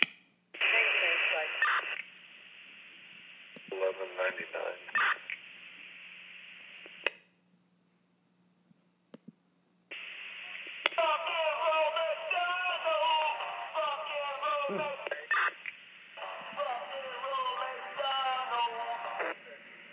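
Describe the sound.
Tinny, band-limited radio transmission with squelch bursts and abrupt cutoffs; a voice sings or chants through the crackly channel, dropping to near silence midway before resuming loudly.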